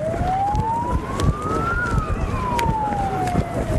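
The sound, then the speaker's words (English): A siren wails in one long slow cycle, its pitch climbing then falling, over a dense rumble of traffic and crowd noise. “At least have sirens for us.”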